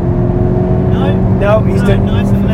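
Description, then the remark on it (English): A sports car drives around a race circuit, its engine droning steadily with a constant low hum, while a person riding inside talks briefly over it. “Henry's probably at, I don't know, 7th or 8th, 10th going around this circuit while we're talking”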